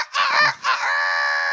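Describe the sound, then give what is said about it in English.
A human voice imitates a rooster's crow: a loud, strained call in a few choppy bursts that stretches into one long, high, sustained note at the end. “No, she did a rooster crow on this episode, and I really thought that was fun.”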